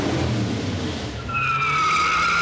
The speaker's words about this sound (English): It's cruise night when car collectors show off their antique pickup trucks and custom rat rods. People gather on the sidewalks like it's a parade.